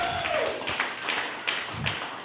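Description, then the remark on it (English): An audience at a stand-up comedy show applauds comic Becky Lynn at the end of her set, a steady wash of many hands clapping with a few sharper claps standing out at roughly regular intervals. No one speaks. “Round of applause for me.”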